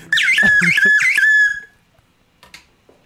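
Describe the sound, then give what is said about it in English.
A slide whistle played underwater warbles through three quick up-and-down swoops with a gurgling, watery wobble, loud for about a second and a half, then fades into near silence with a few faint clicks. “Slide whistle underwater.”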